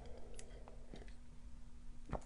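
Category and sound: food or drink, sipping tea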